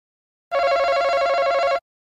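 A game show buzzer sounds once as a contestant buzzes in first to answer a survey question, a loud, harsh, rattling tone held steady for just over a second before cutting off, with no voices around it.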